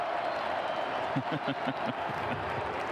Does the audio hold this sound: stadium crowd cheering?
yes